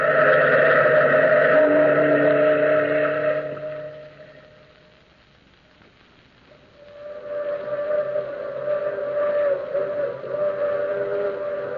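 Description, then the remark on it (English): The long, moaning whistle of a through express train wails in two sustained, chord-like blasts, the first fading into a brief lull before the second swells up and holds, loud and mournful, with no voices. “Listen, that's the long moaning whistle of the through express, wailing through the lonesome night, crying like a lost and anguished soul in the mountains.”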